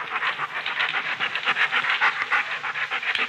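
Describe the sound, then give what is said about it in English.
A puppy walks around a living room, sniffing at almost everything: a continuous run of quick, breathy puffs with no pause over the few seconds, with no voices present. “She began walking around the room, sniffing at almost everything.”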